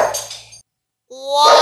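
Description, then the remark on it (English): Dog barking in two loud bursts separated by a short silence, the second bark more drawn out and tonal. “Yeah, we're letting the dogs out on this guy.”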